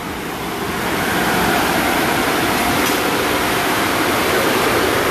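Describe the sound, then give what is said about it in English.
A steady, loud rush of spraying water from a car wash being driven past, building up in the first second and then holding as a dense hiss with no talking. “Hang on, we're passing a car wash.”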